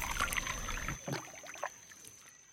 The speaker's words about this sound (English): And we've been canoeing a lot. These days, my favorite sound is the paddle hitting the water and listening to it glide and drip off.